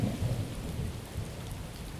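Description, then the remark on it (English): Heavy rain pours steadily in a dense, hissing wash while low thunder rumbles underneath, a continuous thunderstorm in Texas with no voices. “Of course, when it does rain, it can rain a lot.”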